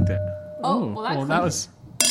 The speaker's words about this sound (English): Do you want to try to clink again? I think we might be clinkable. Let's give it a shot.